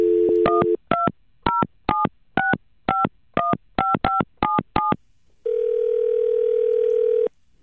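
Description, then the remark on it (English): A telephone dial tone cuts off into a quick run of about ten touch-tone beeps, evenly spaced, followed by a steady ringback-style tone lasting nearly two seconds as a phone call is placed. No one speaks. “So I decided to surprise the listener who sent it and give him a phone call.”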